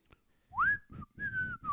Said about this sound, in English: Oh, you know, I just like to blow off steam by going into the woods and whistling. Not walking around, just standing in the forest and whistling. Just lean, just cop a lean on a tree and get my whistle on.